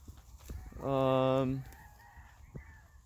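sheep bleating

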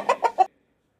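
chicken clucking sound effect

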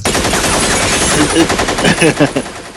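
gunshots

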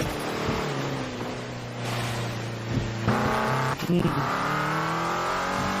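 car engine revving

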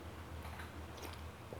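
sipping water

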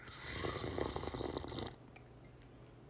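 sipping coffee

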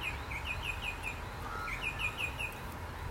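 bird song

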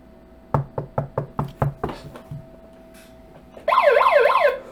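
knocking on a door

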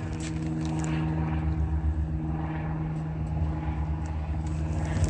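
airplane flying overhead

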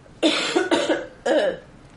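coughing

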